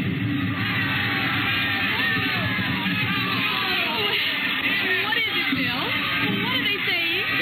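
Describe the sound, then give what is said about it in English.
A dense, loud festival crowd roars continuously in a plaza in Mexico on a spring night at fiesta time, with many voices shouting and yelling over one another, steady throughout with no pauses. “William Travis stood on the edge of the yelling crowd, smiling.”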